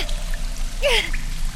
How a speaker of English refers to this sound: But the water! The current is washing me away!